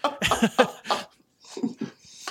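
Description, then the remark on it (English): A run of harsh, rapid coughs, four or five loud bursts in quick succession, then a short pause and a few softer, rougher coughs and throaty sounds. “I'm just coughing up a storm, still getting at the end of this.”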